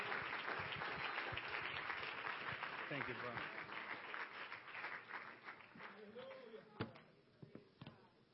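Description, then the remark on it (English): An audience in a church sanctuary in the evening claps for the next speaker, steadily, in a dense, continuous burst of applause that gradually thins out, with voices talking underneath and a few sharper claps near the end. “Let's give a hand clap for the next speaker.”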